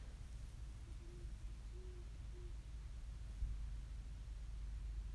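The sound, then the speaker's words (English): An owl close by gives three short, low hoots in quick succession, heard from inside a car with the windows up, over a steady rumbling background hiss, then falls silent while the dull noise continues; no one speaks. “That owl is really fucking close, bro. I swear I just heard a fucking owl, bro.”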